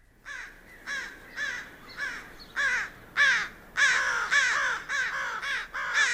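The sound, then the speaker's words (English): A series of harsh, repeated caws from an American crow, coming in quick bursts of about a dozen calls, loud, with no talking. “So here's the crow. We found it. Let's listen to the crow.”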